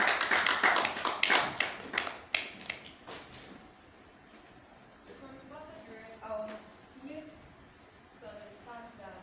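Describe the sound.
A church audience claps for a woman in a dense, rapid burst for about two seconds, then the applause thins out and fades while voices murmur and talk in the background.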